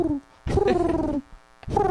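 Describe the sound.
A person imitates a pigeon with three low, throaty coos, each a short rolling warble with a gentle pitch dip, the middle one longest, separated by brief pauses.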